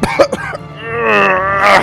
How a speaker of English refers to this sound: The hot, sticky mud sizzled around us. It burned and itched all at once, and with it came a foul stink. I coughed.